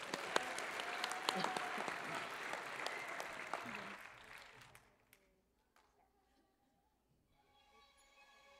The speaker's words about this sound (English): Would you guys give them a big round of applause?